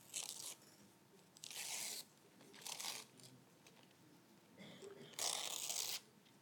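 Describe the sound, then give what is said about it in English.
Wrapping paper being torn off a present in five short, crinkly rips separated by brief pauses, with a dry, papery rustle between tears. “You just tear it off. We're not trying to save the paper.”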